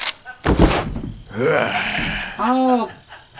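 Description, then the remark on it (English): A single sharp, loud gunshot cracks out near the start, followed by strained gasping and groaning vocal sounds with no clear words. “Gunshot sound.”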